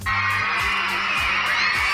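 A crowd outside a wedding venue screaming loudly and continuously, a dense, high-pitched wall of shrieks and cheers that holds steady for the whole two seconds without any clear talking.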